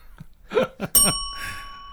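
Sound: bell ringing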